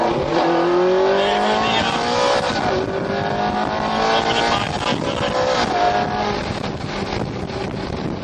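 A sports car engine roars as it accelerates on an open road, driving in a group with a 550 and a 993 Carrera 4S, its pitch climbing through the gears in rising sweeps, loud, with steady road and wind noise throughout.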